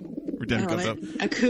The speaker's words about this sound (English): There won't be a ding. There will be a pigeon noise every time.